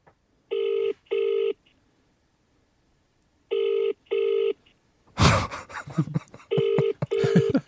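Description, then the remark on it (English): A telephone ringing tone, calling back someone who hung up, repeats in steady double bursts with long gaps between pairs. A sudden harsh burst of noise cuts in, followed by busier sound and another double ring. “Will I ring him back?”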